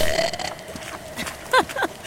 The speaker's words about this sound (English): And make me join her burping contest.